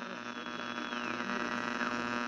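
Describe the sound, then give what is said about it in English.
A steady electrical hum with buzzing harmonics fills the line, constant and fairly loud throughout, with faint whistling tones drifting through the static and no voices. “A little interference here”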